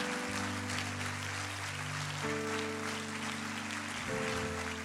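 A crowd claps continuously for the people who came forward as they are led out, a dense patter spread across the whole clip, beneath steady sustained keyboard or organ chords that change twice. No one speaks.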